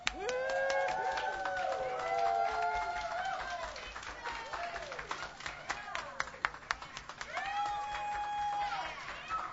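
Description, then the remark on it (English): A live audience at a songwriters' music performance claps steadily while several voices whoop and cheer over the applause, the dense clapping continuing throughout. “We got some live action in the crowd tonight, I'm happy to say.”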